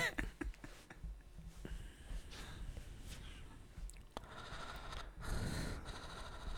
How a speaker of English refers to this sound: Stop fucking breathing.